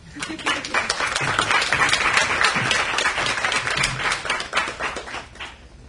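An audience at a reading event claps steadily for several seconds, a dense patter of many hands at moderate loudness, with a few faint voices murmuring underneath before the applause thins out.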